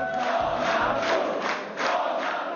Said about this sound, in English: Crowds of supporters chanted his name, and even though his party looks only to have placed second in the vote, Mr. Tusk declared victory.